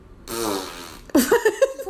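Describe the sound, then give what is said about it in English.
A loud, buzzy fart noise, made as a pick between NC State and Western Carolina, sputters for about a second, followed right away by short, pitched vocal sounds that rise and fall, like a voice laughing or groaning. “That's probably accurate, the fart noise.”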